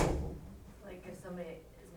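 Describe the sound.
A door shuts with a low, muffled thud right at the start, then soft indistinct voices murmur in the room afterward.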